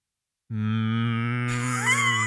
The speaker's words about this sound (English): It was just a cow noise.